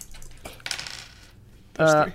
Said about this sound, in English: So now we do... everyone rolls the dice they have in front of themselves.